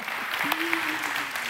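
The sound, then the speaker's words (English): Audience applause fills the space, a dense steady patter of many hands clapping, with a voice briefly rising above the clapping midway through. “That's something to clap about.”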